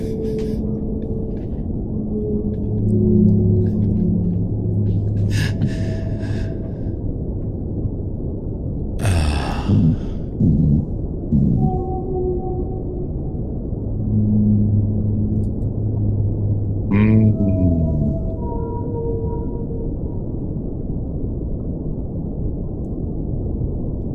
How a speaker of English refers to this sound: You were trying to harmonize with the whale at one point, and that kind of threw me off.